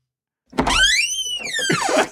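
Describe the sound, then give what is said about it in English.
A door creaks open to let a guest in: a dull thump, then one long squeaky hinge creak that rises and falls in pitch over about a second and a half. “Okay, you're going to open the door or what?”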